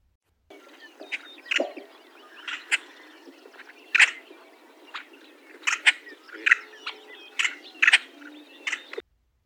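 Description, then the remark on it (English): A yellow-headed blackbird gives sharp, dry check calls, many doubled into quick pairs, repeating irregularly over a steady hiss of marsh background noise. “They can also give this call as a duplicate or doubled version.”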